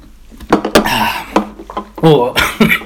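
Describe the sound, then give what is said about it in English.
Shots of Fireball cinnamon whisky are poured and drunk as a toast to Nebraska, with sharp glass clinks and knocks scattered throughout and brief vocal sounds between them. “We thought it'd be appropriate to take a shot of Fireball.”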